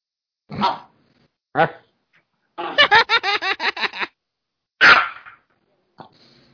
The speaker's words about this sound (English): That is everybody, a fierce little dog you have.